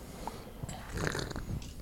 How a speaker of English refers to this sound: Like that sip. Check the receipts. That sip had some fucking meaning behind it. That was an angry sip for our listeners.